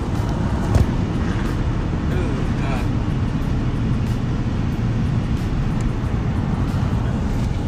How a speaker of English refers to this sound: Right now, traffic.